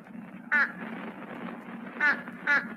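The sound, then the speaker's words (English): A fish crow gives three short, nasal, slightly hoarse calls: one, then a quick pair about a second and a half later, over a steady low background murmur. “Page 118, Fish Crow.”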